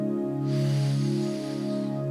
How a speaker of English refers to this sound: If you can, just close your eyes. Take a deep breath in. Hold it for a second. Breath out. A deep breath in.